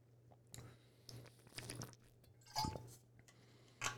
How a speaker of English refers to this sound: Drinking water because I'm talking and I'm in the zone.